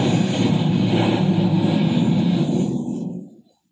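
A loud, steady airplane engine roar fills the air, broad, then thins out and fades away over the last second before cutting to silence as the planes crash. No voices.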